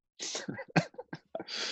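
A sneeze: a breathy, hissing intake, a sharp loud burst, then a long noisy exhale, with a few short sputtering sounds in between. No one speaks.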